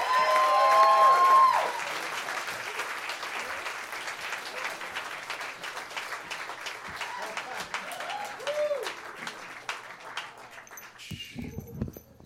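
A big round of applause from a crowd, dense steady clapping with a few cheers and whistles, loudest at the start and then tapering off toward the end.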